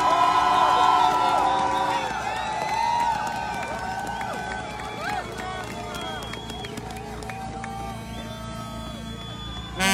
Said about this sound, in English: She needs some encouragement. She needs a great big applause for her. And thank her for everything that has happened this week.